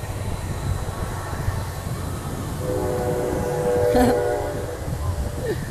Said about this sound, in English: Oh, here comes a train.